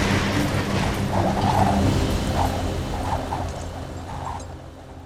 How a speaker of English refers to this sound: The monorail suddenly tips over.